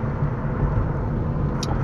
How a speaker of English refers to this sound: Yeah, I'm driving right now.